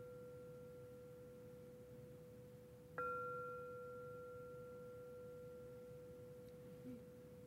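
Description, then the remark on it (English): A single meditation bell strikes once, signaling the end of a sitting meditation, with a clear, pure ringing tone that slowly fades over several seconds, sounding alone above a low, steady hum with no talking. “And shortly you will hear the sound of the bell, which is actually signaling the end.”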